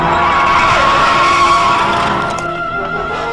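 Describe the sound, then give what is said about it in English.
Tires screech loudly as a car skids to a stop as it is getting dark, a sustained high-pitched squeal lasting a few seconds before easing off slightly at the end. No one speaks. “Look out, a car!”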